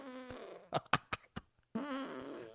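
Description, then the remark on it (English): A fake fart noise made by squeezing a hand under an armpit: a brief string of four or five sputtering squelches, fairly loud, between stretches of voice. “he sat down at the table read, put his hand under his armpit, and cranked off one of those fake fart noises.”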